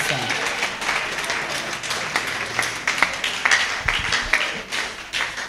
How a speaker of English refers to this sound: Okay, let's clap again for the choir for that song.